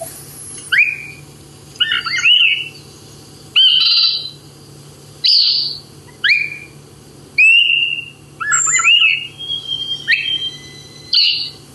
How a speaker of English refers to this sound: So it's a fairly easy thrush song to learn because it's not very variable. And again, it's something you're only going to hear if you're up in the mountains or maybe in the Northeast Kingdom. So the ascending song of the Swainson thrush. Here you go.